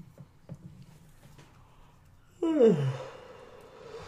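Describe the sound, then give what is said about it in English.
After a couple of quiet seconds with faint clicks, a single loud yawn breaks out, its voiced pitch sliding downward into a long breathy exhale that trails off at the end. “No, I've yawned at least like 3 or 4 times.”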